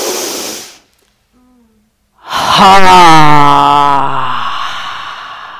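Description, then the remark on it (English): A short breathy rush, a brief silence, then a loud, forceful exhale voiced as a long falling "haaa", engaging the belly during a breathing exercise, lasting about three seconds before trailing off. “And on the out-breath, we're going to engage the belly with a ha.”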